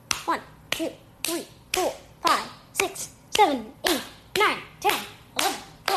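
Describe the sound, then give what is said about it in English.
Sharp hand claps ring out one after another at a steady, even pace, twenty of them in quick succession, crisp with short trailing echoes. “Listen to how many claps, and then we'll see who it is.”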